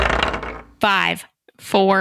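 A short, bright rattle of dice clattering across a table as players roll initiative in a role-playing game, fading after under a second, followed by two brief bursts of voices talking.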